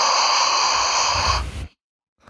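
A single deep breath right up against the microphone, a loud airy rush lasting over a second that ends in a low windy thump of air on the mic, then silence.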